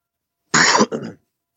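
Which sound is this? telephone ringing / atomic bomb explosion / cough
cough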